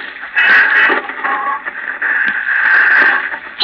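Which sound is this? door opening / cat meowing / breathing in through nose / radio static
radio static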